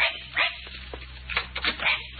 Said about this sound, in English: Hey, so this is Skipper. Yes. Hey, we're going to get you a dog tag, young fella. Look, he's excited.